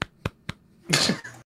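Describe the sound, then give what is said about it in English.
Three quick, sharp hand claps in an even rhythm, followed by a louder, longer burst of rough, hissy noise lasting about half a second. No one speaks. “Baron claps.”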